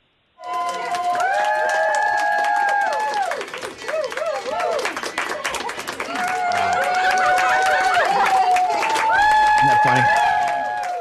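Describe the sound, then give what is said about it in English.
Healthcare workers at a hospital in New Haven, Connecticut clap and cheer steadily as a COVID-19 patient leaves the ICU, with whoops and shouted voices rising above the dense applause, which swells louder toward the end. “But this is them leaving the ICU and getting applause from all the healthcare workers in the hospital.”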